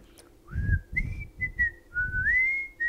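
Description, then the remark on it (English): Someone whistles a short, bouncy tune, the theme of The Andy Griffith Show, the notes sliding between a few steady pitches over muffled low thumps and breathy background noise. “Did they sing like the theme song to the Andy Griffith song? Like, Oh, no, that was whistling.”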